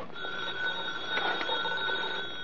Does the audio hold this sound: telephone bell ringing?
yes